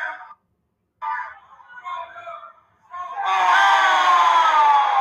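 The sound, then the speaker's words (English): A wrestling crowd at the Russell Center boos after Rhino hits Kate Toomer with a low blow: scattered bursts of jeering voices build, then swell into a loud, sustained wall of boos and shouts that holds to the end. “Oh, Rhino goes low on Kate Toomer. And the fans at the Russell Center let him hear it.”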